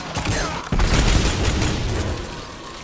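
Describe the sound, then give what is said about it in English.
Heavy video game gunfire from a massive, powerful hand cannon booms, a sharp blast landing partway through and leaving a loud, dense wash of rumbling noise that barely fades. “And he's got a massive, powerful hand cannon.”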